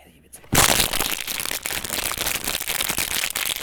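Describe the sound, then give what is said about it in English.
After a brief quiet moment, a voice produces a loud, steady hissing shhh that imitates white noise, holding for about three seconds with a rough, slightly crackly texture. “If I have to make white noise one more time, I will shit myself.”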